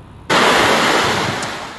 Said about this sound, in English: Roads becoming raging rivers in the Greek town of Mandra, west of Athens. Torrents of water from a nearby mountain flooding the town, sending mud and debris through the streets.